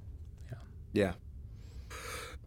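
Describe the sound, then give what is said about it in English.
A person yawns: a short voiced, groaning stretch followed a moment later by a long breathy exhale. No one speaks. “Audible yawn. I thought I muted it.”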